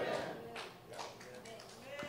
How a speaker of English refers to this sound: Golf clap, everybody. There we go. Praise the Lord.